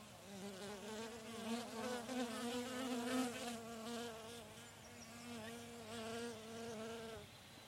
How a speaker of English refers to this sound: I just crouched down by the hive here. They're flying in and out